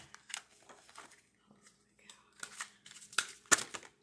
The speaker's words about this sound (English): Let's give these a good shuffle. I've been reading cards all morning.